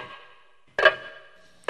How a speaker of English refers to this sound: Oh, listen to that. You hear that ticking noise? Sounds like you're in a haunted house. And the hollow hallways, there's an old grandfather clock ticking, echoing. It's getting louder and louder and louder.